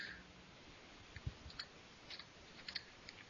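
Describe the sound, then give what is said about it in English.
Soft, scattered clicks of someone typing a web address into a browser on a computer keyboard, tapping out keys in an irregular rhythm at a fairly quiet level with no one talking. “I hear keys.”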